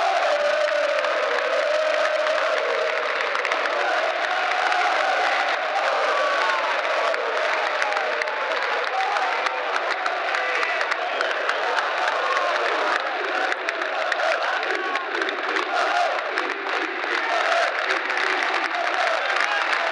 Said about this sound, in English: fans are now coming over to clap the away support here in the Doug Ellis stand.